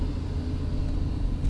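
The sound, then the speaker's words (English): The engine of an old Mack truck idles right next to the speaker, a steady low rumble with constant droning power and no break over the short stretch, with no voices. “The old Mack truck sitting next to me.”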